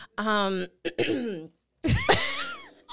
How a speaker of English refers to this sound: trying to clear my throat.